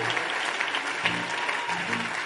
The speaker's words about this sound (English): Are you clapping or you are doing something like clapping?